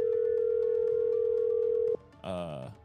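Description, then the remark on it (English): A steady, unbroken ringing tone of an outgoing phone call hums for about two seconds, then cuts off abruptly and a voice briefly answers. “Let's see if he answers my call. Oh, he better. Is it ringing?”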